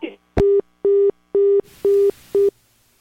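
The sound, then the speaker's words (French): A telephone busy tone after a listener's call drops: five steady, evenly spaced beeps in quick succession, loud and clear over the line, with faint hiss behind the later ones and a brief voice fragment at the start. “Et ça, c'est la compagnie téléphone là, qui frappe.”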